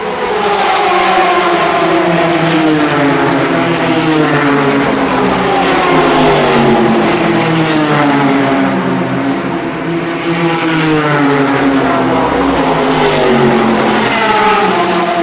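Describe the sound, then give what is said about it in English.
LMP2 race cars go past, engines revving loudly and continuously, their layered, musical whine climbing and falling in pitch in overlapping waves for the whole stretch, with no voices. “I've always said that the sound of the cars at the mob is musical. But I've noticed something, it's the LMP2 cars.”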